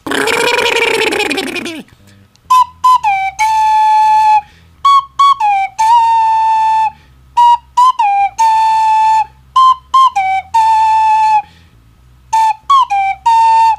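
A short burst of rushing noise gives way to a loud whistled melody from a wrestler's entrance music as he comes out to the ring: bright sliding notes in quick repeated phrases, separated by brief gaps, with no talking.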